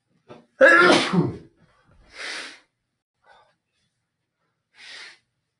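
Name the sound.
nose blowing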